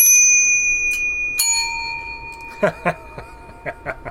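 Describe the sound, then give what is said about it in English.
A small bellhop-style service bell, labelled in French "Sonne pour une bière" (ring for a beer), is struck twice, each bright ding ringing out and lingering, followed by a few short, sharp knocks and faint voices. “Yeah, it's like one of those bellhop bells.”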